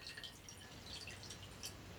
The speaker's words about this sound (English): So, all right, I've got the absinthe in the glass. We are pouring the water into the sugar over the spoon.